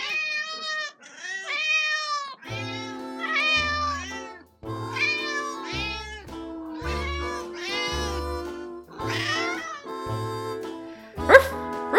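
A cat meows over and over in a near-continuous string of loud calls that rise and fall in pitch, with a low rhythmic thumping underneath.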